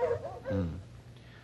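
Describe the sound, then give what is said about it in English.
A cold-trailing bloodhound, one of the pair Maud and Sneaker, whimpers: a short high whine, then a deeper, drawn-out moaning cry, with a quieter whimper trailing off at the end. “And these two here, old Maud and Sneaker, the best cold-trailing bloodhounds in the business.”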